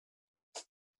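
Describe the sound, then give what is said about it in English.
One short, sharp sneeze bursts out against an otherwise silent background, quick and breathy with a sudden onset, heard on its own with no talking around it. “Bless you.”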